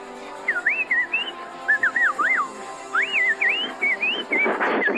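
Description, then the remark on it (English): A person whistles a run of bird-like calls: sliding, warbling notes in quick bursts that rise and fall, loud and continuous for about five seconds with no talking. “can you make some bird noises for us?”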